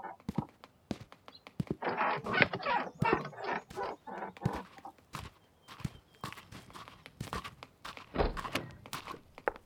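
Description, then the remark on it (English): A door shuts with a solid thunk amid a busy run of footsteps and knocking thuds, fairly loud, with shuffling and rustling between the hits and no talking. “Allow me to get the door.”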